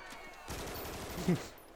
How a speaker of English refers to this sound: To silence the crowd, just fire a machine gun into the air. What kind of gun is that? You know what kind of gun that is, don't you? I don't know what the hell it was. Belt fed.